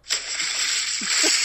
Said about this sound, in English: What the fuck was that? It was the sound of water splashing. A sound effect for you.